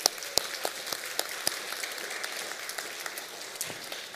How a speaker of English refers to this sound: Can you just, as she stands, can you just honor her and clap for